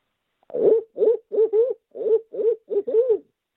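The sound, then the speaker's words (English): A man imitates an owl hoot with his natural voice, giving a quick rhythmic run of about eight clear hoots in rising-and-falling tones, with no other sounds around them. “All right, give us that natural voice owl hoot.”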